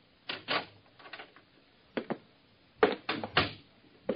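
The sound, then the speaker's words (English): A front door is unlatched and cracked open an inch: several sharp clicks and rattles of the lock and handle come in short clusters, with no voices. “And when he did answer, he only cracked the door an inch.”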